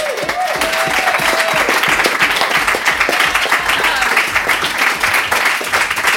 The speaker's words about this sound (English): So coming up next, we have someone who graduated from college today. So let's applaud that as well as her story,